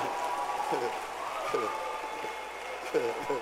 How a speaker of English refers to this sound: Thank you. Clap your hands